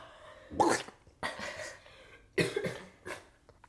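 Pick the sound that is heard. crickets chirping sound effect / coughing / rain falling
coughing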